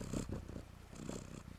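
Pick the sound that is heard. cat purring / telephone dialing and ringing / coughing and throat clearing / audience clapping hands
cat purring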